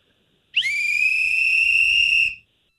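Radio host Jubal Fresh whistles one long, loud, high note while he works; it slides up briefly at the start, then holds steady for nearly two seconds before cutting off, with no talking.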